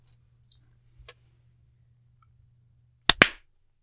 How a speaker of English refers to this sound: Should we do a clap right from the start? Yeah, let's do it. Let's do it at 39.